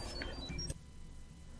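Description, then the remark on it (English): A quick run of short, high-pitched electronic chirps from the Chirp app sending pictures or text from Chrome, stepping between tones for under a second before cutting off to near silence. “Here, this is what it sounds like. Okay. Oh, that's cute. Did you hear that? Yeah, that's cute. I like that. It's very high-pitched.”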